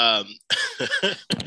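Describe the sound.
A long, loud yawn: a voiced, groaning onset that slides downward, then drawn-out breathy exhalations that rise and fall before trailing off.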